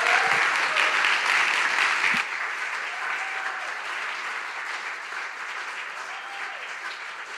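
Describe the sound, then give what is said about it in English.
A church crowd claps steadily in a loud, dense wash of applause, with some cheering and shouts, greeting a speaker coming to the front. It eases slightly in volume after the first couple of seconds but continues throughout. “Would you give a huge shout, give a huge applause for Nicole Barnes as she comes?”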